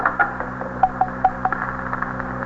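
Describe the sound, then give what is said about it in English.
A telephone being dialed by a police captain calling a police precinct station: a quick series of short, irregularly spaced tone beeps, moderately loud, over a steady low electrical hum with no talking. “is this phone to TS?”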